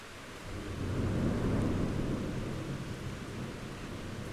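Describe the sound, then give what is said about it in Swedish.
Steady, dense rain hisses throughout while a deep rolling thunder rumble swells early on and slowly fades, fairly loud, with no voices. “Men ska vi nu prata om varför det regnar så mycket?”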